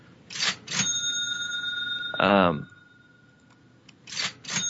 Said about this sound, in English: Hold on a second. I can't get this cash register off. That's so much money.